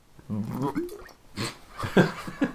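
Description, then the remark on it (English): Wet, gurgling splutters as someone about to cough chokes on a sip of drink and spits it all over themselves, followed by a few sharp sputtering bursts and spitting noises, fairly loud. “I was taking a sip of my drink and I was about to cough. And I just spat it all over myself.”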